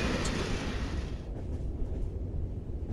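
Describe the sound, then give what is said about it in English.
A train accelerates along its rails in a steady, heavy roar, with a hissing upper edge that fades after the first second while the deep rumble continues. There is no talking. “In my professional opinion as a train manager, it accelerated the train, it would seem.”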